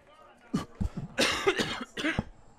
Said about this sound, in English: Figures they get a cough on the night of the game here.